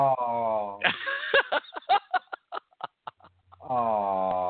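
A chicken clucks in a quick, irregular burst of short, sharp notes, framed at the start and end by longer drawn-out tonal calls, fairly loud.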